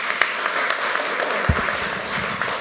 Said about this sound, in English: Yay! Hooray! A round of applause.